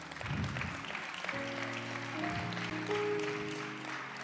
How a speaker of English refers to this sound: Now, I didn't say that for you to applaud her, but thank you that you did. Thank you.